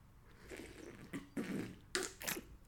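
Someone takes a few quick sips of hot coffee: soft, wet slurping bursts in an uneven rhythm, ending with a couple of sharper airy slurps, fairly quiet and with no talking.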